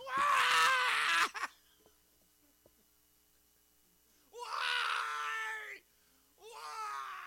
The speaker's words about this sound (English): So Nancy Kerrigan and the person who found Jerry Giambi were screaming the same thing.